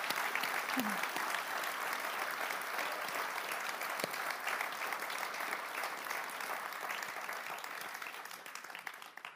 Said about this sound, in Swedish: Ja, det är helt, jag tycker detta är värd en applåd faktiskt. Tack.